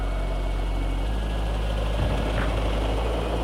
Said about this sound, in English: In moments, Dick Devon's helicopter reaches Futuria.